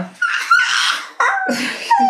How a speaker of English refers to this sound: Being so silly. Yawning to introduce our story here.